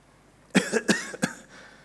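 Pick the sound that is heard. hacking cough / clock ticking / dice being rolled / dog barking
hacking cough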